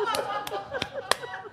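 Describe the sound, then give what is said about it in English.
Four sharp hand claps land at a steady, even pace, keeping time with a melodic Italian music track playing underneath. “Is that how we're supposed to clap?”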